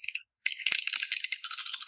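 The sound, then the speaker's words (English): Dice are rolled in a game, coming up plus two: they clatter and rattle in a bright, busy burst, with a brief pause after a short first shake, then almost two seconds of continuous rattling punctuated by sharp clicks. No one speaks. “That is a focus of three and plus two on the dice.”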